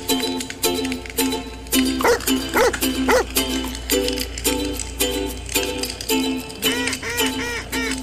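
A bird dog barks over and over in quick, uneven bursts, its loud, yelping calls rising and bending in pitch above a steady humming tonal background, with no one talking.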